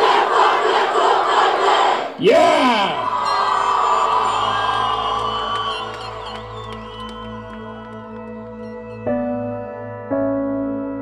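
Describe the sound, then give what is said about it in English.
A large crowd of students cheers and shouts school chants together, such as "Hey, Bobcats! Stand up and cheer and let us know you're here!", loud, with a sharp rising whoop early on before the massed voices settle into a sustained roar. “A lot of them were cheering, sort of doing, you know, some school chants and stuff.”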